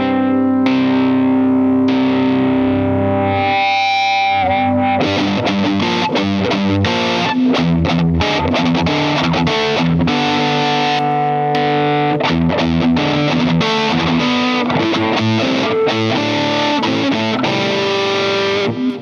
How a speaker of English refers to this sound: normally on my boards, if I want to get like really heavy, I'll do this drive into the EP booster. So it's like a distortion, then the mm-hmm. boost.